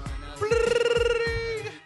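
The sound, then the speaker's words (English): A phone rings with an incoming call, a loud, trilling electronic tone that warbles rapidly for about a second, over a faint low thumping rhythm in the background. “Or actually, I'm sorry, let me put it on vibrate. It's too important. No, he's still calling.”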